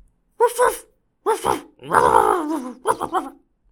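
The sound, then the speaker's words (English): A person imitates a barking dog with four gruff, growly vocal bursts, fairly loud, the third drawn out longer than the others, with brief pauses between them. “The first one said, "I'm good at barking like a dog."”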